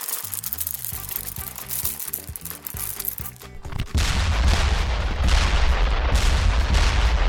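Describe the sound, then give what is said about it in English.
Rapid crackling pops and small explosive bursts, then a loud, sustained roaring blast with heavy low rumble, as exploding jelly beans go off. No one speaks. “Like cardboard, but cardboard that's also exploding.”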